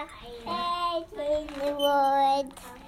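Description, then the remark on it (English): A toddler sings the Hallelujah chorus from Handel's Messiah in a high, wavering voice, holding long notes across two drawn-out phrases with a short break between them, fairly loud. “Now we're singing Hallelujah. Handel's Messiah by a toddler.”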